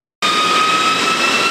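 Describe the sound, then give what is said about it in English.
A loud, steady jet engine roar kicks in abruptly and holds constant, a broad whooshing rush with a sustained high-pitched whine running through it, from F-16 Fighting Falcon engines of the New Jersey National Guard's 119th Fighter Squadron at Kunsan Air Base, South Korea. “Flying from the beaches of New Jersey, F-16 Fighting Falcons and support personnel touched down at Kunsan Air Base, executing the 8th Fighter Wing mission of accepting follow-on forces.”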